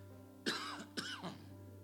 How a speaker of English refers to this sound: I rebuke this cough in the name of Jesus. I didn't have a cough yesterday. Didn't have one leading up to getting behind the pulpit. I rebuke it right now in Jesus' name.